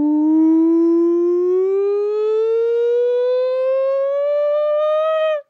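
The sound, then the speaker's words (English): A single voice imitates a siren: one loud, sustained wail that slowly rises in pitch for about five seconds, then cuts off abruptly. “Nonsense siren.”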